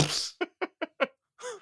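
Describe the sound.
A voice imitates a feeble, wet explosion, like an anticlimactic green-screen explosion out of a single window in a film: a breathy spluttering burst, then four quick, evenly spaced vocal puffs and a short voiced trailing sound.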